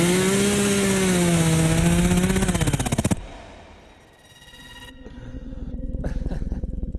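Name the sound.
chainsaw running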